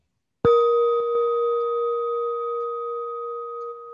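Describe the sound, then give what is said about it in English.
A single meditation bell is struck once at the close of a guided meditation, then rings on with a clear, steady mid-pitched tone and a higher overtone, fading only slightly over several seconds. No one speaks. “Even after the bell”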